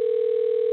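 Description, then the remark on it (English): A phone rings with a steady, pure electronic tone that holds at an even pitch for under a second. It sounds loud, with no voices or other sounds around it. “Right, who phone? Somebody answer your phone.”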